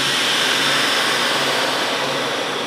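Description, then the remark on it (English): In a processing room, a vacuum sealer seals a double-bagged femur bone, running with a steady, loud motorized whir and hiss that stays constant throughout, with no speech and no breaks in the sound. “And sends it through a vacuum sealer.”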